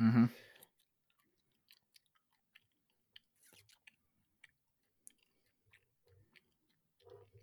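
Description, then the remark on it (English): A brief heavy thump opens, then faint, crisp ticks from a music track being played arrive at a steady, unhurried pace, with a few soft low murmurs in the last seconds. “Oh, a little ticker as well.”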